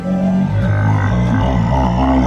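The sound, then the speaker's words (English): A person imitates the deep, rumbling growl of a big, belly-wounded monster in a tabletop role-playing game, one loud sustained guttural snarl lasting about two seconds, with a rough, wavering low pitch and no other sound. “You cut a nice deep gash, like right into the belly portion, and you see just some of these fetid organs just slip out and onto the ground, and this big body just like looks at you, and with a deep rumbling growl.”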